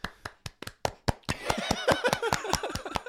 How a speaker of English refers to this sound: Are we applauding because you're going away or because you're going to college?